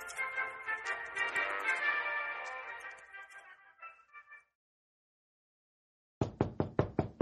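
A short melodic jingle fades into silence, then a quick run of about five sharp, firm knocks on a door in an even rhythm, with no voices.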